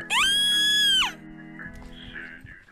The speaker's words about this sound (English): It's just a few bugs. You should really stop screaming every time you see one.